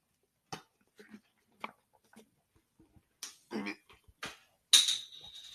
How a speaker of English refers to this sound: Yeah, I just heard that. I just dropped the lid. I will get that in a minute.